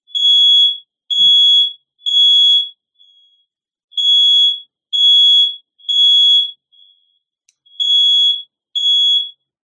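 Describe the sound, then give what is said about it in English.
A smoke alarm close to a kitchen oven, set off when the oven is opened, blares in a loud, shrill pattern of three beeps, a pause, then three more, repeating the classic triple-beep cycle, with no one talking. “We have a fire alarm that's close to the oven,”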